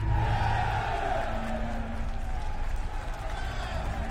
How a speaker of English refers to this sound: A huge cheer went up and all the boys jumped to their feet. I cheered too, being swept up in the moment.